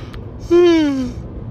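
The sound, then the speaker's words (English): A single voiced yawn, a breathy drawn-out groan that slides slowly downward in pitch and fades after under a second, with no talking around it. “Well, you can't edit out a yawn.”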